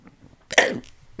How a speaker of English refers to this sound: Not gross. That was really gross. Did you vomit a little bit? No. Oh, okay. It was just a weird, violent burp.